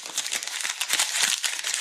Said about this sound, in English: You can tell by the crumbled paper, Kelly, it's time for our revision.